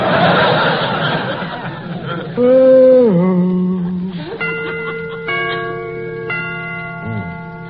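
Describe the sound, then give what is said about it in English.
A clock chimes the hour, with about four ringing, evenly spaced strokes that overlap and sustain. They follow a burst of noisy laughter and a drawn-out, wavering vocal tone. “To get them chimes made softer. No sense in letting the neighbors hear the time for nothing.”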